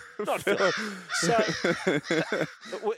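A crow caws repeatedly and loudly, with about eight harsh, throaty calls coming in quick, uneven bursts and brief pauses between them.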